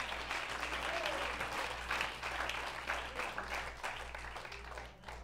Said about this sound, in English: Clap your hands to Jesus.